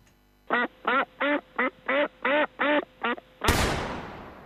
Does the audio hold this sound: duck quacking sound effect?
yes